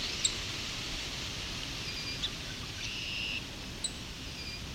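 A song sparrow gives a few sharp, isolated tick-like calls, spaced a second or two apart, set against a steady hiss of outdoor background noise.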